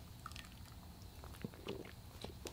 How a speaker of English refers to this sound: And yes, I'm drinking coffee. It's nighttime. I'm drinking coffee because I like coffee. And just something to sip on.